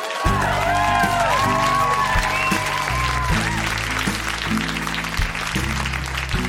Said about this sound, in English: A round of applause for teachers, Montreal.